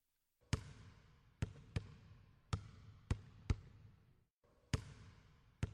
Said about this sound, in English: Huh? What? What is that? Matt awakes to loud dribbles, the swish of a chain-link net, but the cat still sleeps soundly, so he shrugs and returns to bed.